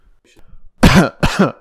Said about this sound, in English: Sorry, I had to clear my throat there.